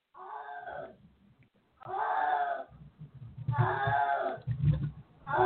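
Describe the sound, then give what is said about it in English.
A male cat meows loudly three or four times in long, drawn-out wailing calls, with low rumbling background noise between and beneath the cries. “So my cat is just meowing.”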